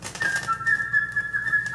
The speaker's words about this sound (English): First, the flute player will play the part of the bird.